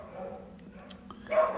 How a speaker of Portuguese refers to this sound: Agora os meus cachorros estão latindo muito.